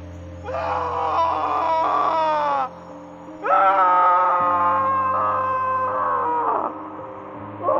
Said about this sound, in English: Bones cracked like twigs, and desperate wailing faded into the drone of the mountain wilderness at night.